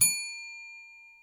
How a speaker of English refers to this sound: To help me control my rowdy panel of recidivists and reprobates, I will employ what I have called the inappropriate bell. An example of this would be...